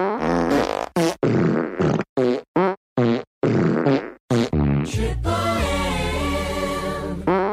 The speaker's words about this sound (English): And now, a spontaneous medley of farts.